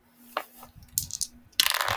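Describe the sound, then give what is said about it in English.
A small die drops onto a hard surface, giving a few sharp clicks and light rattles before a louder, sustained clatter as it tumbles and settles, landing on 15. “I dropped one of the dice.”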